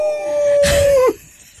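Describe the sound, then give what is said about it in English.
A person imitates a howler monkey's howl: one loud, steady-pitched vocal howl lasting about a second, roughening into a breathy burst before sliding down and cutting off. “Please leave a message after me. I'll be a howling monkey.”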